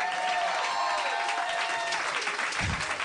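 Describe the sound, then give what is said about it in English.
A crowd claps steadily for a few seconds, a dense, even wash of many hands with no single claps standing out, with a brief low thump near the end. “Oh, everybody clap.”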